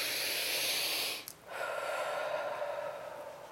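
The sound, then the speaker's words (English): A slow, airy breath: a long, steady inhale, a brief pause, then a drawn-out exhale that gradually softens. No talking. “Is that more of a living prayer, what the breath you just heard?”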